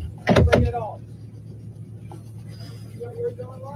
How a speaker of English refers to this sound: It's a guy, random guy, checking her car door to get in. She's at a light.